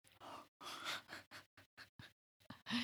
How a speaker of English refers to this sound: is snoring it up over here. I know. How dare you relax when the rest of us have to continue working?